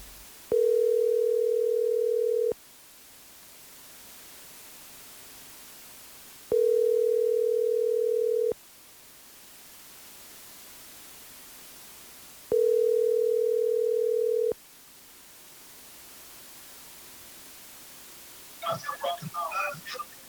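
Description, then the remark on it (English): An outgoing phone call's ringback tone: three steady, two-second electronic tones separated by long pauses, followed at the end by a brief clatter as the line is picked up. “Oh, my goodness. He's answered the phone.”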